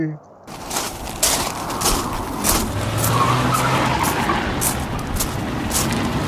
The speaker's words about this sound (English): There's a car driving away.